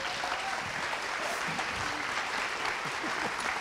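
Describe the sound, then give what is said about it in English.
A crowd applauds steadily, a dense wash of many hands clapping at an even, moderately loud level, with a few faint voices and a brief whoop mixed in. “Give them a big round of applause again, please.”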